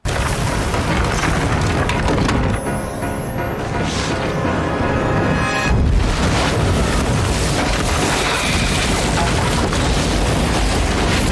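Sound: explosion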